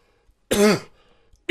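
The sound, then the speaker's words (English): A single harsh, throaty cough bursts out, rough and loud, followed by a short quiet pause before the start of another cough cuts in at the end. “apart from getting rid of that cough, I'm going for the sympathy vote.”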